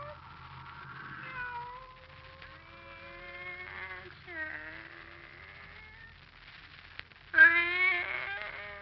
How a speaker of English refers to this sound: Oh, it's you, Kitty.